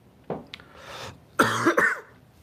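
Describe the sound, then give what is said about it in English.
A coughing fit: a couple of small hacking coughs, then a louder, harsh, rasping cough that breaks into a second burst, with no talking. “Why am I coughing like this?”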